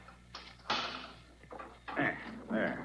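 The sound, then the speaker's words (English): A key rattles and turns in an intricate door lock on a crypt door, with a few metallic clicks, followed by the scraping, slightly creaky sound of the door being pushed open. “This is an intricate lock, Waldemar. It takes careful handling of the key.”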